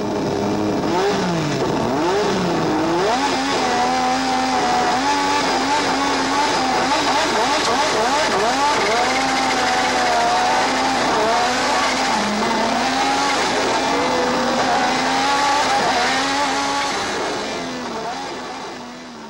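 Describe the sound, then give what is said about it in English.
Loud 1980s racing car engines scream and rise in pitch through repeated gear changes, with tires squealing and skidding over the continuous roar for the full length, no voices present. “And the engines were just insane.”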